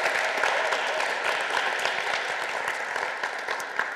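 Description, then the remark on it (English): Steady applause from an audience for a guest before a session begins, a dense wash of many hands clapping at an even level for the full four seconds, with no voices standing out. “could we just give him a round of applause before we start?”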